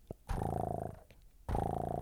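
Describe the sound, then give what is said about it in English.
A cat purrs loudly in two strong rumbling bouts, the vibrating buzz of each inhale and exhale separated by a short pause, with no voices. “That was an intense purr.”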